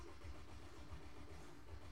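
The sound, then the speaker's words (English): A heavy truck engine rumbles low and steady, turning over and idling as the truck begins to move out of the way, with no voices over it. “Hang on, I'm going to move this truck out of the way because it is fucking pissing me off.”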